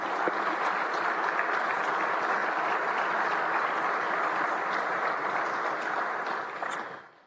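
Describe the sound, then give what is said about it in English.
A crowd claps steadily in a dense, sustained wash of applause at a college baseball program event, holding at an even loudness for about six seconds before fading out quickly at the end. No one speaks over it. “So if you'll join me in giving them a round of applause.”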